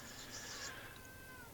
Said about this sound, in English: Fucking cat. Anyways, so you feed the damn thing. It's fed. Pet the damn thing. I pet her constantly. She does this to me all the time. I cannot sit in my RC room in peace. This cat. She just can't get enough